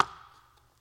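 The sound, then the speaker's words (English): A single knock on a door given as a demonstration: one sharp, fairly loud rap that rings out briefly and fades, with no follow-up knocks and no voices. “When you are knocking on a door, you don't just go like this.”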